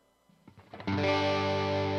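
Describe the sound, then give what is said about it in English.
An electric guitar with overdrive distortion: a few quick picked notes climb upward, then a loud, gritty, saturated chord rings out and sustains to the end, played alone with no voices. “That's got drive on it.”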